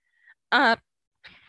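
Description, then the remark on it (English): A short, loud, buzzy burp pushed out through the nose, lasting about a quarter second, with a faint breathy exhale before it and a softer rustle afterward. “I just burped out my nose.”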